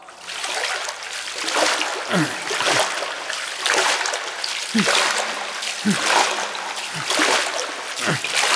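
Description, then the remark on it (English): Continuous splashing as someone swims through water toward the edge, with repeated sloshing strokes every second or so, fairly loud over a steady watery wash. “Anyway, I'm gonna swim for the edge.”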